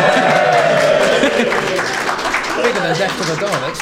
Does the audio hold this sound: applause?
yes